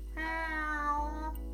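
A cat gives one long, drawn-out meow lasting over a second, clear, with no other sounds or voices around it.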